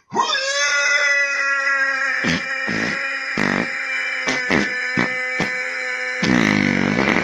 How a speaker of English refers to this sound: I am going to tell you, I believe that's 100% fake, but it's still a fart. I think this is what he does. I'm almost positive that that was a fake fart.